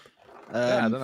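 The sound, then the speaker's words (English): A single drawn-out dog bark, fairly loud, with a tonal, slightly whining quality after a brief quiet lead-in. “He's summoned the dog.”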